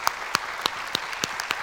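A small audience applauds, with sharp, distinct claps landing in a fairly steady rhythm over a soft bed of scattered clapping. No one speaks.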